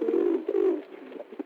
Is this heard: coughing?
no